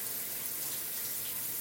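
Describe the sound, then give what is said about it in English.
Shower water, just switched on as someone steps in, runs steadily with a continuous, even hiss of spray, moderately loud, with no voices or other sounds over it. “I threw my clothes in the hamper and switched on the water as I stepped into the building's steam bank.”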